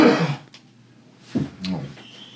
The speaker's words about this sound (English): I'm coughing now anyway.